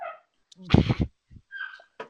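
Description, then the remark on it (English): Several high, thin puppy whines and whimpers, with a short yip or bark among them, sound in brief bursts over about two seconds, mixed with voiced sounds. “And I feel like your puppies in the background also want to know.”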